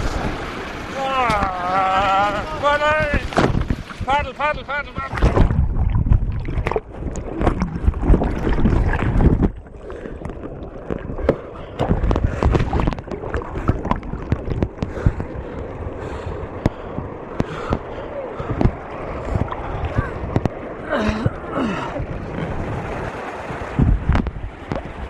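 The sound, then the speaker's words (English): Loud, constant roar of rushing water with heavy splashing and buffeting wind on the microphone, as a kayaker falls into churning weir water and the boat and paddle are swept down the river; a voice cries out briefly near the start. “I'm standing on the weir. I've just fallen in, and the boat and the paddle have gone down the river, and the lads are bringing it back up.”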